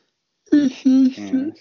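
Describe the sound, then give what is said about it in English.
A person yawns out loud, a voiced, groaning yawn broken into three short stretched pulses of sound, fairly loud against an otherwise quiet background. “Niggas don't want to hear you yawn.”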